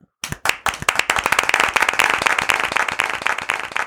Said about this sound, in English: Pretty much what happened was BWK found out that we can make a studio audience sound with the echo on the thing. So he's like, let's do it for the show.